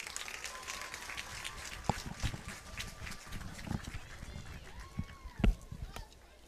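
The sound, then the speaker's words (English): Steady applause from a large stadium crowd at a school senior night, honoring senior mascots and their families, a dense wash of clapping that carries on throughout, with a few sharper thumps and indistinct voices mixed in. “Please give these ladies a round of applause.”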